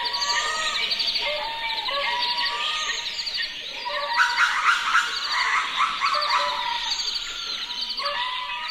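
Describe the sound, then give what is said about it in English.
A dense wildlife chorus of insects, birds and lemurs in a spiny desert region of southern Madagascar, from a composition by an artist: overlapping bird chirps and calls over a steady insect buzz, with louder, busier bursts of calling midway through; no one speaks. “We leave you this week with a mix of insects, birds, and lemurs that inhabit a spiny desert region in southern Madagascar.”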